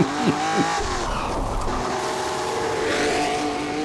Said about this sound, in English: you're seeing these cars racing through streets in some of the most memorable scenes you'll ever see